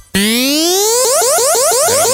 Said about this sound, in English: Why is that a laser beam?